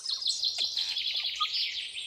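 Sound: birds singing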